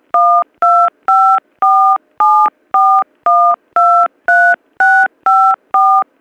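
A rapid run of about thirteen touch-tone keypad beeps, each a short, loud dual-pitched tone, pressed in a steady, even rhythm with brief silent gaps and no voices, as a package tracking number is keyed in during a phone call.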